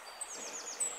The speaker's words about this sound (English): I'm literally doing this episode outside. That's why you hear wind and hawks and shit. Because I'm outside, barefoot.